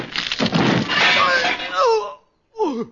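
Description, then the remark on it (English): A loud crash of a camera being smashed over someone's head on a film set, with splintering noise for about a second, followed by a pained vocal groan and then another short cry after a brief pause. “Ravelli, what's the idea of smashing the camera over Martin's head?”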